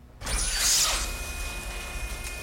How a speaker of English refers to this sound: Saloon doors are open.